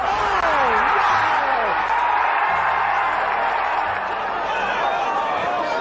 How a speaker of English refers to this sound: The biggest shots and the biggest and brightest moments. The roar of the Sunday crowd.